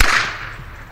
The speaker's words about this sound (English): Eventually, the second whipper walked over the bridge, and though he wouldn't answer questions, he let me record his whip up close. It was an incredible sound. Clean, booming, and very, very loud.